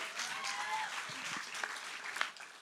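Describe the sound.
An audience applauds steadily, a dense wash of many hands clapping at moderate volume, with a few faint voices and cheers mixed in, continuing throughout.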